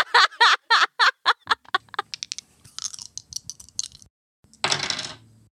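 Dice rolled to use magic clatter in a quick run of sharp, bright clicks that thin into scattered taps, then a final loud burst of rattling before they stop, landing on a 6, a failure. No one speaks.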